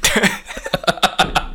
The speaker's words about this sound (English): This coffee needs to go down my windpipe rather than my stomach pipe. Sounds like it's still in there. God. Have a big cough there.